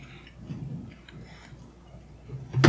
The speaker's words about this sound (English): I don't know which one it is, but I heard somebody chewing. But that's what I was focusing on. So obviously, I'm you know, like somebody. When you have earbuds in and you chew, and it sounds like so fucking loud. Yeah, that's what it sounds like now.